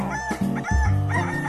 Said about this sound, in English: And the cockerel cock-a-doodle-dooed.